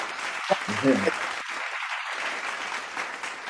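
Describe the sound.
A steady wash of hand clapping from a group, dense and continuous for the whole stretch, with a few brief voiced murmurs near the start rising above the noisy applause.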